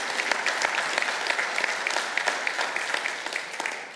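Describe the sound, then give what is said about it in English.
A crowd applauds steadily, dense overlapping claps forming a loud, sustained wash with scattered sharper hand claps throughout; faint cheering may mingle in, and no one speaks over it. “I don't know what we're going to cheer and clap for in this place.”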